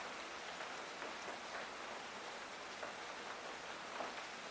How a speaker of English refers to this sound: So the water element, you know, which is raining down at the moment from the sky, or in the rivers and oceans, lakes, and the ponds out there, is exactly the same water element.